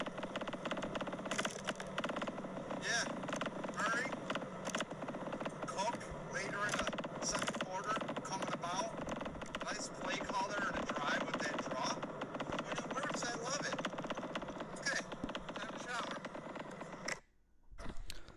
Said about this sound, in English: That's me driving with fans in my car because I'm a drywall guy and I need fans to dry. And the fans are in the background. My phone case sucks, so it's vibrating.